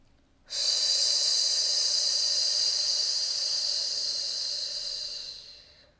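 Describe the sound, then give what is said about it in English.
A long, steady hiss of breath pushed out through the teeth as a snake-breath exercise, starting abruptly and holding for about five seconds before slowly fading. Fairly loud, with no talking. “Just going to lean into 20 more seconds of a snake breath.”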